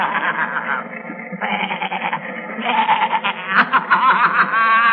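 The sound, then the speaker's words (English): Several billy goats bleat in overlapping, wavering cries, a continuous loud chorus of nasal, quavering calls with no pauses between them. “There are a lot of billy goats.”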